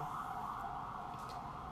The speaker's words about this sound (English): No, I was going to say, do you hear the sirens in the background? No. I feel like it probably, maybe it didn't catch it.